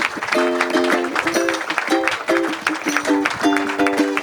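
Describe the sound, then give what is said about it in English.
Loud audience applause, a dense, steady wash of clapping that holds for about four seconds, with voices cheering and calling out over it. “Give them a big hand.”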